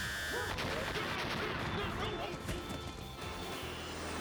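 Loud cannon fire booms out in several sharp, heavy blasts over a dense, continuous roar of noise, forceful, like a battle scene in full swing.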